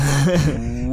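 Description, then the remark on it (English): A voice imitates a fire alarm siren, as a firefighting tree like Treebeard might, with a sustained, loud hooting tone that steps up in pitch, dips, then glides steadily upward again over about a second. “And trying to make a sound like a fire alarm.”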